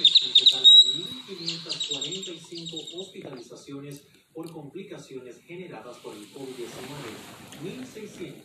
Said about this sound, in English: I love those birds. If I didn't like them, I wouldn't have them on my phone, right? My notification.